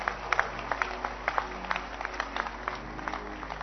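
crowd, audience clapping hands

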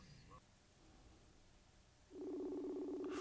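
signal or alarm, phone call ringing tone

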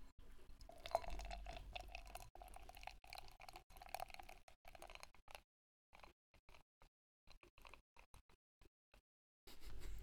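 food or drink, beer being poured

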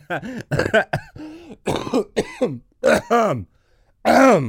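human body sound, person coughing

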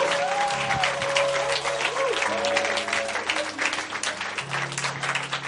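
crowd, audience applauding

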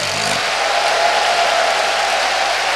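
crowd, audience clapping and shouting

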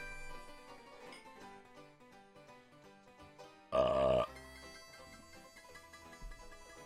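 human body sound, burp

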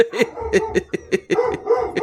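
animal, dog barking

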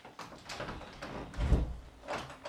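household object, door being opened

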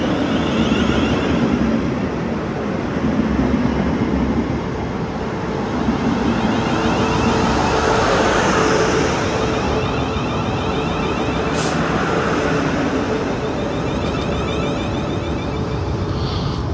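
vehicle, train running

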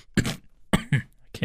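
human body sound, cough

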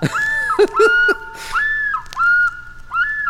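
bird, loon call

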